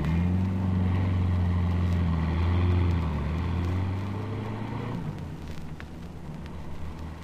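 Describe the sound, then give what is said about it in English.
A car engine hums steadily and loudly, then its low drone changes and fades somewhat as the car is driven about 50 yards down the street, leaving a quieter rumble behind. “you take the car down the street about 50 yards and sound the old horn again if anything looms up.”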